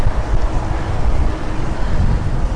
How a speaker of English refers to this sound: And I live on a pretty busy street, so that's how you hear all the cars.